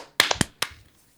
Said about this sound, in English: We will do a clap sync in 3, 2, 1.